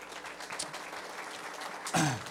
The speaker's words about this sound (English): a round of applause for me.